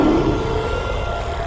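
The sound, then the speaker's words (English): A monster roar sound effect in a radio advertisement for Selco Plumbing and Heating Supplies, standing for an ancient water heater as a monster in the basement: a deep, loud, rumbling growl that holds steady for about a second and a half without a break, with no voices. “There's a monster in the basement.”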